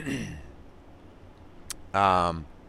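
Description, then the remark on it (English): A single short, voiced throat clearing, fairly loud, from a lingering cough left over after an illness with fever, comes after a quiet pause and a faint click, with the tail of a voice fading out at the start. “Had a cough that lingered on for a while. I still have the remnants of it.”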